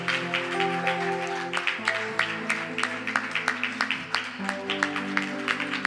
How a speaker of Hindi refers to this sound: हमारे चर्च के एक विशेष भाई हैं, तालियों से हम स्वागत कर सकते हैं।